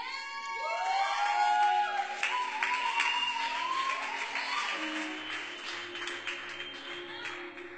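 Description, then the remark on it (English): A crowd claps hands in a steady, busy patter while voices cheer and call out over it, fairly loud throughout and easing slightly toward the end. “The way they're clapping hands, they're like, we will meet for 30 minutes and then just talk about what you ate for lunch and then we, and how's the fasting, you are fine, and then we can go home.”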